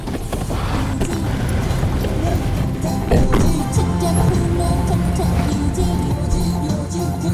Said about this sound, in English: The boat arrives in Bagan.